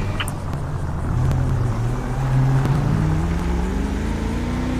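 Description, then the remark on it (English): A car engine drones steadily at about 70 to 80 on a road called Joshua while matching another car's speed, its pitch slowly climbing as it accelerates, with loud continuous road and wind rumble underneath and no voices. “I'm matching a car's speed on Joshua. It's doing about 70 or 80.”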